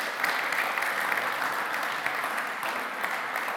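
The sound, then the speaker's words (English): An audience claps steadily for several seconds for a serving team of about ten people, a dense wash of many hands with scattered sharper claps standing out, holding an even loudness throughout without voices breaking through. “Can we give them a round of applause one more time?”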